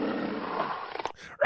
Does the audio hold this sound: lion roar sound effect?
yes